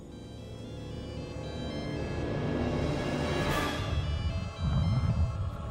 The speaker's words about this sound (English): Sounds like a cell phone inside the stomach of a dinosaur. You hear that? Ring, ring, ring, ring.